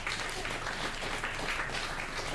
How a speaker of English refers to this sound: Give him a round of applause here. There he is!